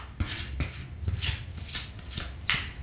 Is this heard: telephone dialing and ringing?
no